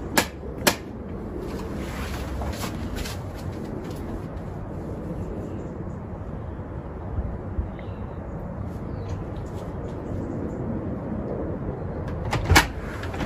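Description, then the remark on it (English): A couple of sharp knocks on a red, Christmassy front door, door number 2, at the start and another near the end, over a steady outdoor hum of traffic, with no voices. “Let's go and knock the door and find out.”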